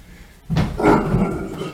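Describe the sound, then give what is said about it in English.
A sudden dog noise on the stairs, a brief burst followed by a short yelping, scrambling sound lasting about a second, with no one talking. “Sorry, I thought one of the dogs fell down the stairs.”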